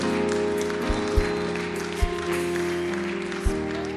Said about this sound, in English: Clap for them.